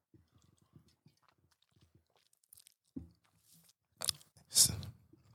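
food or drink, sipping coffee

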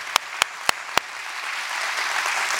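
crowd, audience applauding

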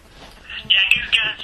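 signal or alarm, telephone ringing

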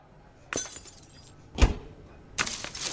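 impact, drinking glass breaking

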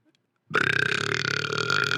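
human body sound, a burp

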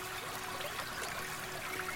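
nature, flowing river water trickling

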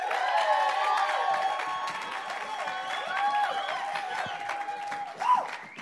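crowd, audience applause and cheering

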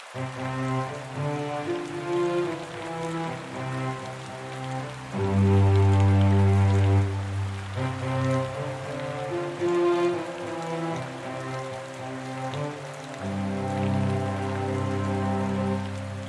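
nature, monsoon rain falling

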